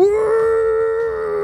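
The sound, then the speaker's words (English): A person's voice imitates the howl of a hound monster: one loud, sustained, steady mid-pitched tone held for about a second and a half, with no other talking. “The worst howl ever.”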